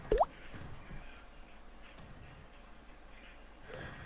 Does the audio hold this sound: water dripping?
yes